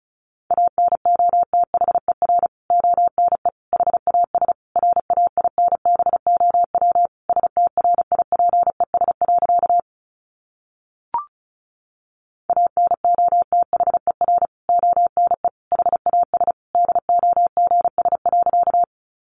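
Rapid Morse code at 35 words per minute sending easy practice phrases, a single steady mid-pitched tone keyed into quick dots and dashes, with a short silent break and a faint click partway through.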